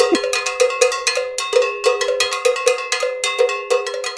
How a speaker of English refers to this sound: The cowbell's a fun thing to talk about. It is. I got a fever, and the only prescription is more cowbell.